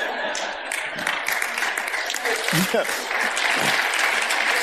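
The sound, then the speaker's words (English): A crowd at a service applauds in a steady, dense wash of clapping that holds at an even level throughout, with a voice briefly breaking through partway in. “No, don't clap. Don't clap.”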